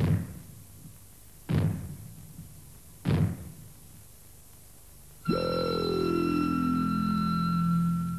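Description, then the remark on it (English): Three heavy, booming bangs ring out in short succession, about a second and a half apart, as the warning signal that fallout is expected, then a louder hit gives way to a sustained metallic ringing tone that slowly falls in pitch. “When fallout is expected, you will hear three bangs in short succession, like this.”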